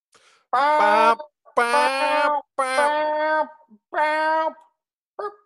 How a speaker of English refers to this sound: Dude, all right, air horns. Let's go. Ready?